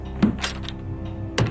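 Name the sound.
door closing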